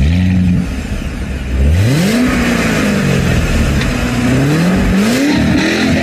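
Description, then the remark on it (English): A new Corvette C8 sports car engine revs loudly, its deep rumble dropping briefly, then climbing and falling in several throaty waves, with no one talking. The car has touring, sport and track modes and only 150 miles on it. “the new Vette, I think it's a C8 model, I'm not 100% sure what they call it, is probably one of the most advanced cars”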